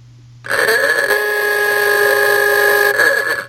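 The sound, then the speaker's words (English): An aoogah horn lets out one long, loud, buzzy honk lasting about three seconds, its reedy tone holding steady before cutting off. No one speaks. “It's in the Ugahorn email time.”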